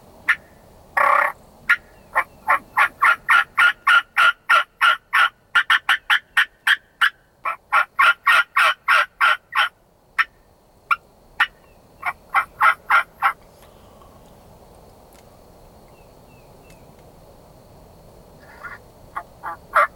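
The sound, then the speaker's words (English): A hunter settled in a hunting blind makes a rapid run of sharp, turkey-style game calls, dozens of clipped yelps and clucks in quick succession for about thirteen seconds, then fading to quiet outdoor background with a few faint notes. “I'm gonna make a few calls and see what happens.”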